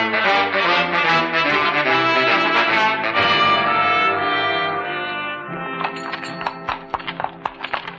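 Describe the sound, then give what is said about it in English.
Horses walk up a stream with hooves clopping in a loose, unhurried rhythm, half-buried under a full orchestral score at first, then standing out more clearly as the music thins toward the end. “What's the use of having horses if all we do is walk? And up a stream, too.”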